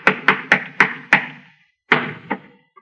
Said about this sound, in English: Hey, listen. You hear that? Somebody's walking on the ceiling. Listen.